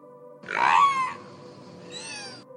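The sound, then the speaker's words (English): A killer whale named Wiki mimics human speech with two strained, squeaky-hoarse utterances: a loud, rising call first, then a shorter, thinner, higher one after a brief pause. “She's the first killer whale ever to be recorded imitating human speech.”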